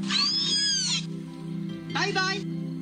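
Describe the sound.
A killer whale makes two squeaky, voice-like calls, each about a second long, with warbling, sliding pitch as it mimics human words, over a steady low hum.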